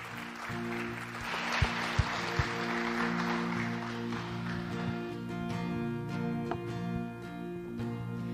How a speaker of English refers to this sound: Thank you, guys. Say a big round of applause for, just a thank you applause